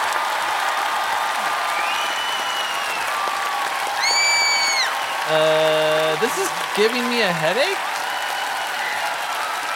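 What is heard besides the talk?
clapping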